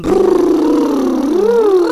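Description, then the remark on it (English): A continuous buzzing lip trill done as a vocal warm-up exercise for singing, voiced and sustained for two seconds, with the pitch gliding gently down, then rising and dipping again, steady and fairly loud with no talking. “Our little lip buzzing. Yeah, let's do that now.”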